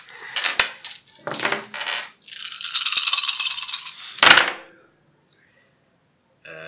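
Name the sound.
dice being rolled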